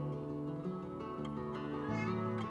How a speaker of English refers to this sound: Oh, and there's one of the cats. The cats who have figured out how to open doors, which we've had lots of cats. None of them have been able to open doors, and I guess they learned this at their shelter, so they are crafty.